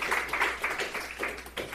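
A short stretch of clapping from a group, a steady patter of hand claps at moderate volume, heard from a slight distance with no one talking over it.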